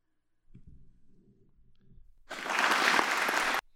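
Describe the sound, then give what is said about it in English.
A short burst of clapping and cheering-like applause swells suddenly after a few low muffled thumps, holding loud and dense for about a second before cutting off abruptly. “Why are you applauding that?”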